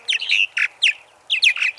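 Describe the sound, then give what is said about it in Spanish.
Bright, gurgling purple martin calls, a run of quick chirps and warbles in two bursts with a short pause between, fairly loud with no other sounds. The species migrates seasonally between North America, where it nests, and the Amazon in South America. “La golondrina azulnegra viaja al sur, rumbo al Amazonas”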